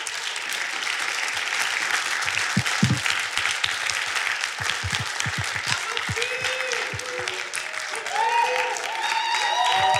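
Sustained audience applause for a speaker, a dense wash of many hands clapping at steady volume, with faint voices and cheers rising through it toward the end.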